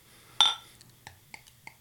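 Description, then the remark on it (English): A bottle of barrel-aged dark beer is pried open with a bottle opener: one sharp metallic pop with a brief hiss, then a few light, evenly spaced clinks over a faint low hum. “Goddamn bottle opener. Oh, here I have it is.”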